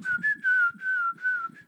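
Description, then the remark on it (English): Someone whistles a short theme tune, the steady pitch gliding gently across four connected phrases separated by brief breaths, with no talking. “That literally was like just you whistling in the daytime.”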